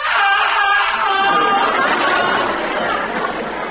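A man lets out a long, loud, sustained scream that fills the whole moment, harsh and strained, holding steady for several seconds before easing off slightly at the end.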